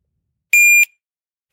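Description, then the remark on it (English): A loud, piercing electronic beep from a shot timer used for dry-fire practice with a 1.5-second par time sounds once for about a third of a second, then after a short silence a second identical beep starts. No voices. “It's not beeping. That's weird. It was just beeping a second ago.”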